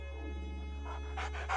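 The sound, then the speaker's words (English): A dog pants in a quick run of short, breathy gasps that grow stronger toward the end, over a steady low hum with no talking. “He was panting now, his breath coming in a never-ending series of short spurts and gasps.”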